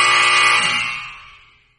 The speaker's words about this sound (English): You know what's really funny before I hit the buzzer on you?